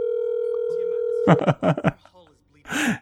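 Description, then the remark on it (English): A steady, buzzing telephone ringback tone from a phone call being placed drones for about a second, then cuts off as voices start talking, with a brief pause before another voice speaks. “Alright, we're calling him, baby.”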